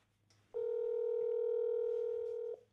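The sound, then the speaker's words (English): A telephone dial tone sounds as a call is placed, a steady, loud electronic hum for about two seconds, then cuts off abruptly, with only a faint low background hum around it and no talking. “let's try calling Jonathan again”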